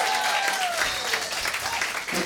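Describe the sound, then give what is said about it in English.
An audience claps steadily for the final act of the night, a dense wash of many hands with a faint cheer or whistle riding over it, sustained at an even loudness throughout. “I know you just applauded, but also like one more maybe? Yeah, big one?”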